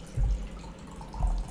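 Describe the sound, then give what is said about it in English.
Coffee pouring from a special pouring implement, a short liquid trickle that surges twice with a soft splashing, dripping quality, fairly quiet and with no voices over it. “You can hear the coffee being poured.”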